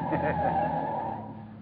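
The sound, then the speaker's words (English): A steady rumble of a taxi cab's engine in heavy evening street traffic on Christmas Eve, humming and droning throughout before easing slightly at the end, with no voices heard. “Hey, cabby, you think you could pull out of this traffic line for a minute?”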